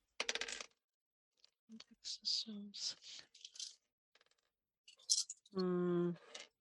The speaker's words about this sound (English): I am rolling four dice. What do we got?